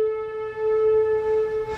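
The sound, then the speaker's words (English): A noon tornado siren about a mile away holds a steady, droning wail with clear harmonic tones, sustained throughout at moderate loudness with slight swells as it rotates. “That siren is probably a mile from me. I don't know if you can hear that, but... here it comes. It turns.”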